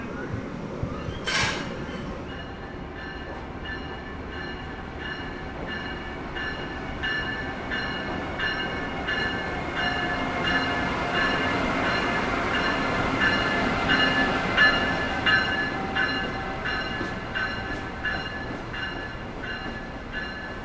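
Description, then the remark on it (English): An electric locomotive rumbles steadily, with a sharp metallic clank near the start as it makes its final disconnection from the train, then a rising electric whine and deep rumble as it moves forward a few feet and pulls slowly away. No voices are heard. “The final disconnection is taking place, and the electric locomotive is about to depart. It has disconnected, moved forward a few feet.”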